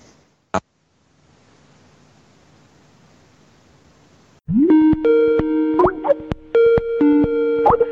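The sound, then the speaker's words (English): A single click, then a few seconds of faint line hiss before a loud, steady telephone tone cuts in, holding with short breaks as a call is placed and rings. No voices. “I'm going to give him a dial.”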